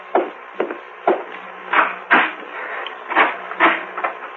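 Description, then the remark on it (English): A door being opened, marked by a run of wooden knocks and clunks, roughly eight in a loose, uneven rhythm, with no voices. “Oh, the door, someone there.”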